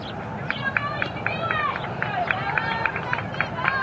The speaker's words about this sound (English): As you can hear the Eagleville crowd cheering